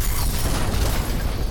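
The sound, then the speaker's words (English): A submarine blows up in a huge explosion that rumbles in a deep, sustained roar, loud and dense with low-end boom and crackling debris noise that holds steady throughout, with no voices present. “Just as she rose above the submarine, desperately flapping her wings for lift, a huge explosion went off.”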